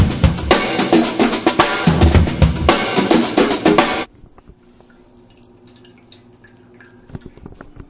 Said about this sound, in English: If you heard any of that, I began the siphon.